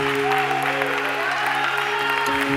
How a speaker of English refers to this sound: God one more hand clap of praise.